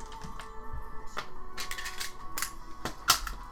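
Three six-sided dice clatter across a tabletop in a quick series of sharp, hard clicks and rattles, moderately loud, over a faint steady background hum with no talking.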